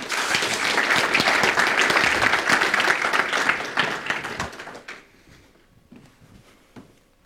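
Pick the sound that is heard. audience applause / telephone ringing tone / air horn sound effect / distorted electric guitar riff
audience applause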